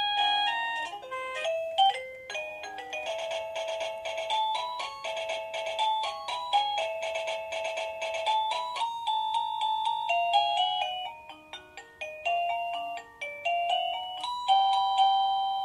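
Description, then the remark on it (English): A wireless doorbell receiver plays a bright electronic chime melody, then cycles through several more tune variations in quick succession while the melody is being changed, clear with no talking. “That's why it's important to have your doorbell and your receiver very close together when you want to change a melody.”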